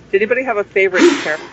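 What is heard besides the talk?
sneeze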